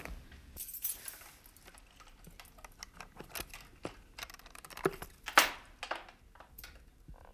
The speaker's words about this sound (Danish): Man trækker nøglen, og man kigger igen på toilettet. Låsen. Der er ikke nogen skavanker, som mange af de gamle låse har.